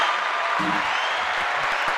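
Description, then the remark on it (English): A steady wash of applause from a group, dense crackling claps filling the whole two seconds at an even loudness, with a faint murmur of voices beneath. “Clap it up.”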